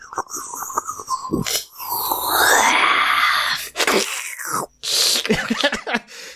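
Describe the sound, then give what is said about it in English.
A voice imitates the strange whispering, slurping noise heard within 30 feet of a magical void of darkness: breathy hisses and wet sucking bursts around a drawn-out, rising and falling moan, with several sharp gasps and pauses toward the end. “So all of a sudden, the air and light around that shifts, and everyone starts to hear this very strange whispering, slurping noise within 30 feet of that.”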